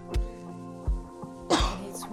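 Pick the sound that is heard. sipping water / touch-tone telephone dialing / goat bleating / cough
cough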